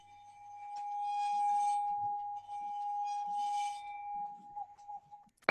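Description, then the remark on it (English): A tuned cast-metal cleaver, suspended from a handle system so it rings out, is pinged, giving a steady, clear mid-pitched tone with shimmering overtones, sustained for several seconds, with faint light clinks and taps underneath and a sharp knock at the end. “So needs a bit more rosin on the bow, but you can also ping them as well.”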